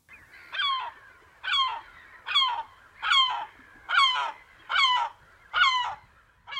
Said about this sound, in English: The herring gull.